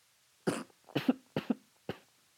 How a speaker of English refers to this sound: Thanks for catching that on mic. You coughed into your elbow. Like, it's not going to pick up.